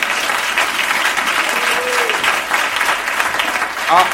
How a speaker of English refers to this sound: And maybe if I can blow our own horn, we've got one of the best musicians that we know of. Oh, yes, you can clap hands for them.